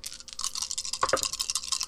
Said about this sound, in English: It's a scientific fact that the more you shake your dice, the better they roll.